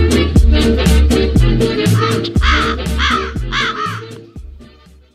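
A crow caws repeatedly, loud, a run of harsh rasping calls over a deep, steady rhythmic backing that fades out at the end.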